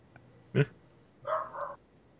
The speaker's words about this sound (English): Hello? There's a dog on the boat. The dog dropped the pencil. Ah! Nope, the dog's chasing someone now. Huh. It's a dog! Oh.